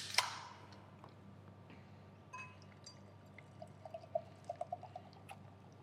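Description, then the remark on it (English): A can of lemon drink cracks open with a sharp burst of hiss, followed by steady fizzing as liquid pours, with a run of bright gurgling blips near the end. No one speaks. “So why don't we crack it open and have a sip.”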